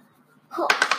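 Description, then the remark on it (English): Dice clatter on a hard surface during a tabletop role-playing game, several quick sharp clicks tumbling and knocking together over half a second after a quiet start, fairly loud; the rolled die hits another die and shows an 8. “Did you want to reroll that? Because that hit the yeah. dice.”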